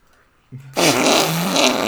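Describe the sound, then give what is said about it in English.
A voice imitates a fart, a loud, sustained, buzzing raspberry that starts with a brief low hum and blares for over a second, alone. “just the biggest fart sound ever.”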